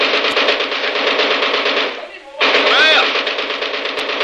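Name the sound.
machine gun firing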